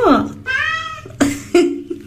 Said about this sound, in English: let's talk about this cat that is gaining 2 million views on YouTube based off of what this cat says